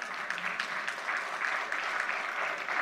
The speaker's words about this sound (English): Come on, that deserves a better praise clap than that.